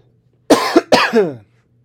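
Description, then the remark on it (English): Two sharp coughs in quick succession, the second longer and raspier, then quiet. “Sorry, I don't have a cough button.”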